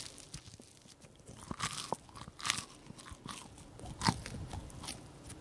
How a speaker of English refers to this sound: I'm going to get food on the microphone. I have to have room to put the bread in between the mic and my mouth. Enjoy this toast. I'll chew it chewily.